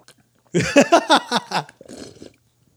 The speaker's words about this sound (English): Shh, try yours, dude. Hold the mic up while you sip that.